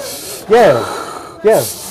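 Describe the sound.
A person imitates someone breathing deeply in a sauna: two loud, drawn-out breaths roughly a second apart, each with a rough voiced rasp and an airy hiss.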